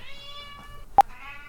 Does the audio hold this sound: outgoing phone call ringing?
no